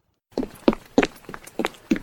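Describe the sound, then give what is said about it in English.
Quick, light footsteps of a small child running back into a room, about six steps in a steady running rhythm, after a brief silence, with no talking. “About 15 more minutes passed, and you hear the tiny footsteps running back into the room.”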